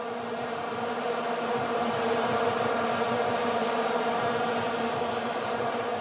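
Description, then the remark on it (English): A dense, continuous drone of many plastic vuvuzela horns blaring together at a World Cup football match in South Africa, a buzzing, steady wall of sound with layered harmonic tones and no pauses, and no one talking. “Vuvuzelas, the plastic horns whose noise has been driving people mad. Just that continuous hum, which actually drowned out all of the meaningful noises.”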